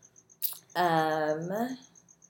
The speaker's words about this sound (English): There's crickets. My backyard is very active.